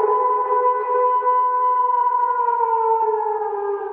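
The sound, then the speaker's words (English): A person howls like a werewolf: one long, loud, sustained wail held steady for several seconds, then sliding slightly lower in pitch toward the end, with no talking. “Let me have a go at a werewolf impression.”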